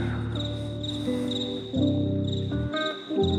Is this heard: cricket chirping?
yes